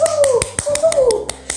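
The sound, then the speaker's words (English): A steady run of sharp, evenly spaced claps, about nine in quick rhythm, fairly loud, with a wavering high-pitched voice-like tone sliding over them; applause for an honored guest. “I need you to give her and my co-residents host another round cup of applause.”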